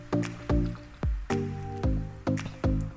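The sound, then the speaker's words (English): Wet sipping of water through a metal straw: six or so quick slurps in a steady rhythm, each with a faint hollow ring, with no talking. “And now I'm putting something else in my mouth. My metal straw, and I'm drinking my water.”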